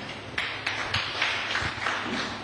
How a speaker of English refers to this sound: Round of applause for mommy.